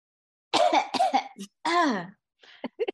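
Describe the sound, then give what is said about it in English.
A voice imitates coughing: a few exaggerated, raspy hacking bursts, followed by a drawn-out throaty sound and a couple of softer short coughs at the end. “She's just like coughing and like.”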